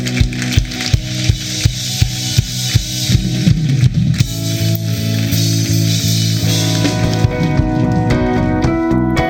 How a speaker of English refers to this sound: Now put your hands together and give the Lord a hand clap.